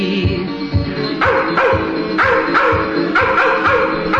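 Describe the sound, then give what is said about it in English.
Several hounds baying together, loud drawn-out barks overlapping in a steady, repeating rhythm, continuous throughout with no voices. “The grass is dancing wildly in the meadows to the tune of hounds a-baying from afar.”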